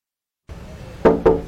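Two sharp knocks on a door in quick succession, loud and hollow, following a brief stretch of low background hum.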